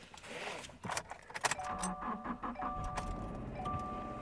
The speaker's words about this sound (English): But anyways, let's hop into my car.